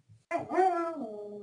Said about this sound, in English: Oh, I heard a doggy, and that sounded like Gwen. That is Gwen.